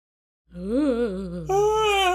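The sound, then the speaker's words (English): A single human voice gives a low, wavering, yawn-like groan that abruptly jumps to a higher, sustained, eerie howling tone, a yawn turned into a spooky howl. No words are spoken. “I just heard the yawn. Here's the howl, yeah. I turned my yawn into a spooky noise.”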